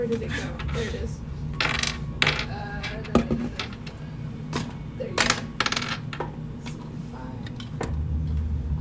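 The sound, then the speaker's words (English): Dice clatter and tumble across a hard tabletop in a series of sharp, bright clicks and rattles, with a low background hum and faint voices. “Oh, it is wonderful to use this dice again.”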